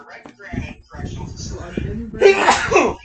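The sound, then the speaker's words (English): A single stifled sneeze bursts out near the end, a tight, muffled snap of breath, following a few seconds of murmured talking. “Dude, you sneeze like a pussy.”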